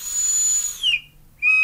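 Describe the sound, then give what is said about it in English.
An electronic whistle from a vape box mod in whistle mode: a high, steady tone gliding down to a lower pitch, a brief silence, then another loud sustained whistle tone, with no talking. “You hear how it starts and ends with a whistle?”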